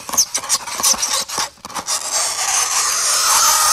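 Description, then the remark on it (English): Fingernails scraping down a chalkboard: a few rough, rasping strokes, then a long sustained high-pitched screech that stays loud and piercing to the end. No talking. “Where's my chalkboard?”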